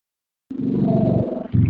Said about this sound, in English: Now you can tell I'm outside. You heard that. Oh, was that a motorcycle?